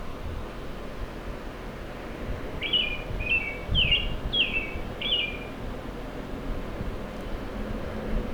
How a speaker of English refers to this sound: Oh, it's a bird. Oh, she hears that.